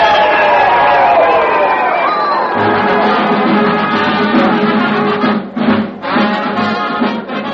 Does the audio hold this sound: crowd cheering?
yes